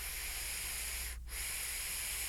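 Airflow drawn through a Vaping Monkey 22 millimeter mech during dripping: a steady, smooth, breathy whoosh with no whistle, briefly cutting out midway before resuming just as evenly. No one speaks.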